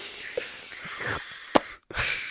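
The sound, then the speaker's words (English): Someone imitates snorting through a straw: a string of short breathy sniffs and wheezy inhales, with a sharp burst partway through, a brief silence, then a longer airy rush of breath. “How do you snort a straw?”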